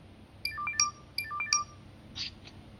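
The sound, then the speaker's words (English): A phone's electronic ringtone plays a short chiming melody twice in quick succession, moderately loud over a quiet background, followed by a brief soft rustle. “Oh, it's my phone ringing.”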